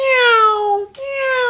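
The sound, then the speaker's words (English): A human voice mimics a cat's meow in two drawn-out, tonal calls, the first long and gently falling, the second shorter after a brief break, sung clearly as the cat's line in a sung animal verse. “I had a cat and the cat pleased me. I fed my cat on a greenberry tree. The little cat goes.”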